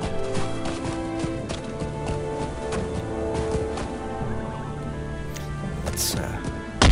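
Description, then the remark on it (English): Video game sound: a ridden horse's hooves clop along in a steady, uneven rhythm at moderate loudness as it goes through snowy terrain and breaks its leg, set against a dense bed of sustained, music-like tones that continues throughout. “Ooh, I think that my horse just broke his leg.”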